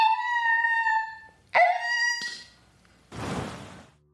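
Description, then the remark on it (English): A dog yelps in pain after being kicked by another dog's hind legs: a long, high, wavering cry, then a second sharper yelp, followed by a brief burst of rough, breathy noise. No one speaks. “The shock of the yelp snapped Power Dog out of it.”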